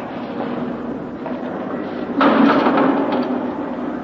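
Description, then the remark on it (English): A heavy door is shut and locked about halfway through with a loud clunk and a brief metallic rattle, over a steady low background hum. “He wants to lock that door”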